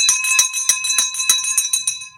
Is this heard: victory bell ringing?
yes